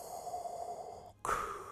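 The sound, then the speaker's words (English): A voice imitates heavy mechanical respirator breathing: one long, raspy, hissing inhale, a brief pause, then a louder rasping exhale, alone with no talking. “But just the sound of the lightsabers, the breathing, the...”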